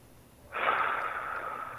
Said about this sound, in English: just listening to you, I have to hear you take a couple deep breaths. That's a mediumship that's called clairaudient.